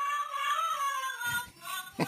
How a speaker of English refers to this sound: That's wish you a Merry Christmas, but meows.